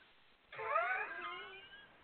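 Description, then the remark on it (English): A single drawn-out meow, voiced by a person imitating a cat, rises then slowly fades over about a second and a half, moderately loud, with no other sounds. “Like a cat.”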